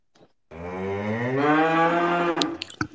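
A single long, loud cow moo rises and holds for about two seconds, rich and droning, then cuts off into a few brief clicks and rustles.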